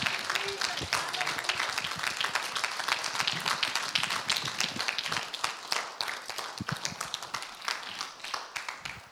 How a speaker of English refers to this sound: Can we stand up and clap for Jesus? Can we stand up and clap for Jesus? I say, someone clap for Jesus. Someone clap for Jesus.